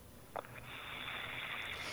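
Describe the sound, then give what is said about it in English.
A long, steady deep breath rushes through as a soft, airy hiss, beginning after a brief click and holding evenly to the end, with no talking. “Just from hearing, just getting information just off the top of, you know, my head like that, just listening to you, I have to hear you take a couple deep breaths.”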